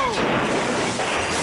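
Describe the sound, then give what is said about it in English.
A loud car crash sound effect: a dense burst of smashing and crunching noise that fills the whole moment and rumbles on for over a second without letting up. “Crashing sucks.”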